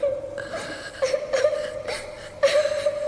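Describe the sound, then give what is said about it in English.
A child crying in a thin, steady high-pitched whimper, broken by several sobbing catches at irregular intervals, with no one talking. “Someone crying. A child crying?”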